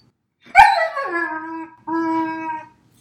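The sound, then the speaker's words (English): A female puppy whines in two drawn-out cries: the first starts high and slides down into a steady moan, then a brief pause before a second, even whine. No one speaks. “She's whining.”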